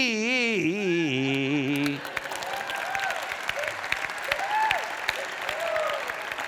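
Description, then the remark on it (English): A sung comic line about a woman in an SUV ends, then an audience breaks into steady, moderate clapping, the ladies not clapping very enthusiastically, that continues for about four seconds, with a few faint voices calling out underneath. “Now, the ladies are not really enthusiastically clapping.”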